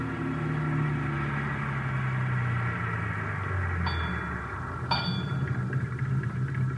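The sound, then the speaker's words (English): A car engine rumbles and gradually winds down as the car drives up to a service station on Vermont Avenue in the rain and slows to a stop, with a steady hiss behind it and two brief high squeaks near the end. “we drove to the service station on Vermont Avenue where Best was supposed to be employed”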